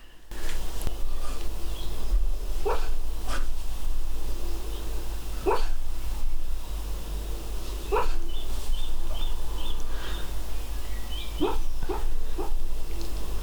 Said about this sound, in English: Paige is dreaming. Aw, Paige is doing little puppy barks. Get her a mic.